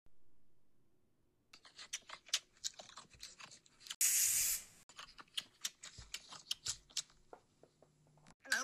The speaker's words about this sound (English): See? Told ya. Willowbacks always spray when they're hungry.